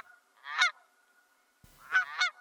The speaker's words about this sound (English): These are birds that, these are, sounds like a goose, but I'm going to say like a Canadian geese. Right. They're like brown and black and white.